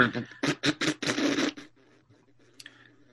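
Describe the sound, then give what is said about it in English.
A voice imitates a wet fart with the lips: a loud, sputtering, buzzy raspberry in several quick bursts lasting about a second and a half, then quiet with a faint squeak. “That's an excellent wet fart.”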